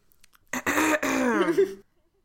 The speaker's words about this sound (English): Let me clear my throat so I can tell the people.